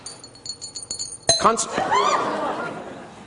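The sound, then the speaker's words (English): An object dropped into a glass is shaken from side to side inside it, giving a quick run of bright, ringing clinks for about a second, then voices and laughter take over. “Imagine his name and imagine him inside the glass, and I want you to release that negative energy by shaking it from side to side.”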